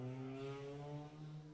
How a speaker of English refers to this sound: Did you hear that car go by? That space car? I thought we were out in the middle of nowhere. Probably there must be some people joyriding.